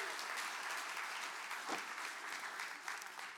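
A crowd applauds steadily, dense clapping forming a continuous bright wash of noise at an even level for a few seconds, with no voices standing out.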